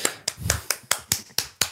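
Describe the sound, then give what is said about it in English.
Hand clapping in praise of someone's good job, about eight crisp, sharp claps at a steady, fairly quick pace, each one dying away quickly before the next, with no talking. “I'm clapping you.”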